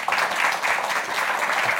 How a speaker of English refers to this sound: Please give our guests a huge round of applause. Thank you both so much for being here.